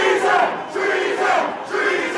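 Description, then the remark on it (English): A large mob of rioters shouts a rhythmic chant of "Free Mike Pence!" in unison, loud, with two-beat bursts repeating about once a second over a roaring crowd. “Officer Eugene Goodman led the mob away from the Senate chamber where Pence was located as they shouted his name.”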